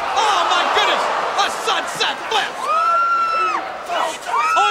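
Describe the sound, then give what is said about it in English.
A loud arena crowd cheers and roars continuously, with individual shouts and long high whoops rising out of the dense wall of noise. “Like, it was brutal, and it was awesome, and it's memorable, and it kept the white hot crowd going here.”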